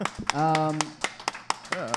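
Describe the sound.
A slow clap: a series of sharp, evenly spaced hand claps, about six in two seconds, with a person's drawn-out voice and short vocal sounds overlapping them.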